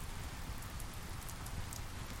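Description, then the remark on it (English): Steady rain falls continuously during a storm at dusk, a dense, even patter of drops on a surface with a low rumbling undertone, moderately loud, with no voices present. “The rain provides a steady percussion that becomes part of my song.”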